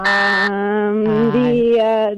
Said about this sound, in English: It was after the buzzer.